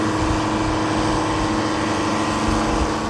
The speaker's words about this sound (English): A large blue travel lift raises and lowers sailboats and powerboats into the water and moves them around the boatyard. I love sitting in my van and watching them work.